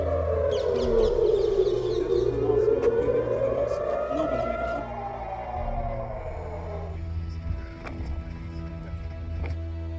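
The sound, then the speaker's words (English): Air raid sirens wail loudly in a slow rising and falling tone for about five seconds on the outskirts of Jerusalem during a rocket attack, then fade into a low outdoor rumble with scattered faint knocks. “Sirens were just going off. Oh, here they go again.”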